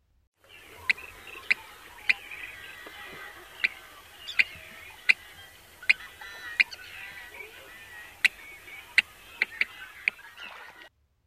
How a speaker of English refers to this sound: Next is the yellow-headed blackbird. Notice how it's slightly longer and almost two-syllabled.